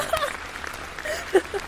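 A short burst of crowd applause sound effect, a dense patter of many hands clapping at moderate volume, with a few sharper claps standing out before it cuts off.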